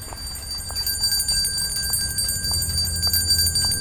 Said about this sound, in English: Ring the bell. Yes. Ring the bell and listen. We'll really listen.